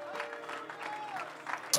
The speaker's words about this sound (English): Somebody clap your hands one more time.